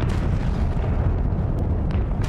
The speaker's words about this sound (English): the sound of banshees all around me, as hell erupted in fire, brimstone, smoke, heat and light, as shell after shell landed. It was worse than I could ever have imagined hell to be. I gasp at the magnitude of the barrage.